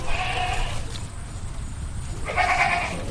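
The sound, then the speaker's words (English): A herd of goats and sheep on a farm in Newport, Rhode Island, including Gulf Coast sheep, Hog Island sheep and Tennessee fainting goats, bleat in two distinct calls, one at the start and another near the end, with a steady outdoor rumble of ambient noise underneath and no speech. “He's protecting an unusual herd of goats and sheep from lurking coyotes.”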